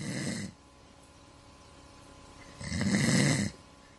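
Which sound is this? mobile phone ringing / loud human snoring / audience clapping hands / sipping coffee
loud human snoring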